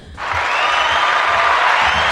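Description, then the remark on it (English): Applause bursts in after a brief quiet moment and holds steady as a dense, loud wash of clapping from many hands, with no voices standing out. “It's a lot of applause, man.”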